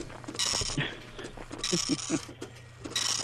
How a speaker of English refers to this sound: Here comes my ID. It's coming out of the dot matrix right now.